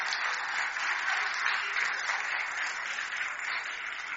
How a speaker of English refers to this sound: There you go. Give them a clap, shall we?